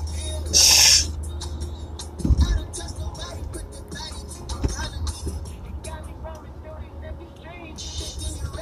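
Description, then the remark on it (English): A can of Arizona Kiwi Strawberry fruit drink is sipped inside a car: a brief fizzy hiss, then a dull knock as it's set down, all over the low, steady rumble of the car interior. “Just wondering, no, it's not a beer in the car. This crisp ass Arizona Kiwi strawberry.”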